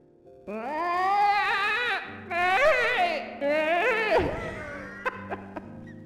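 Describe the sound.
A voice imitates a woman in an emergency room squawking like a chicken: three loud, strained, warbling bursts with wavering pitch, followed by a few short clucking hiccups and breaths.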